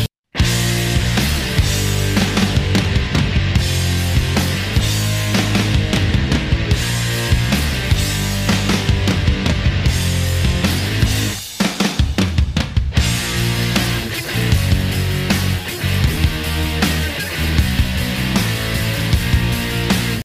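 Loud, dense distorted rock guitar with a raw, messy edge, backed by drums and bass, playing continuously with a brief drop near the middle before surging back in.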